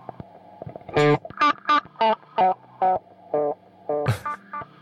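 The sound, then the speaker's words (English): An effects pedal playing on its own, driven by its multi-wave low frequency oscillator: a processed, distorted synth-like tone pulses in a steady rhythm of about nine bright bursts over a low hum, each swell modulated and wobbling, ending with a sharp noisy stab; no voices. “Multi-wave low frequency oscillator. It's playing on its own now.”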